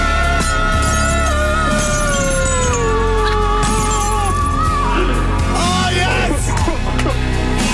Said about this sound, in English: Shattered old glass in studio.